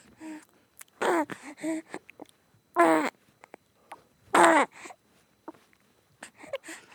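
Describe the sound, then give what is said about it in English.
A very young infant boy babbles and coos in a few short, sing-song bursts separated by brief pauses during a recorded interview, fairly clear, with no adult talking. “I have a very young infant son, and I recorded an interview with him.”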